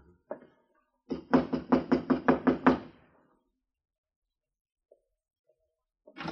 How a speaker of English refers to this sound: Go ahead, Temple. Knock.